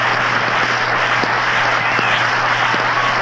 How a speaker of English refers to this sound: And the crowd is still in an uproar over that play.